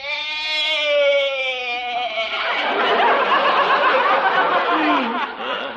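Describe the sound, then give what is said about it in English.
A single long, loud bleat from Arthur, a goat, starting as a quavering, wavering cry and then breaking into a harsh, raspy, breathy rattle for several seconds before trailing off. “Yeah, you sure bleated a bib full, Arthur.”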